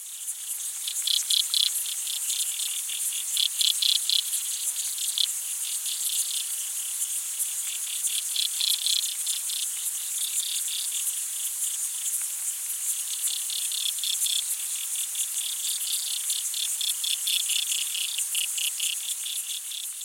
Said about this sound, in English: smaller aquatic insects like the water boatman and the diving beetles that we've talked about. So this is a recording of all of those things happening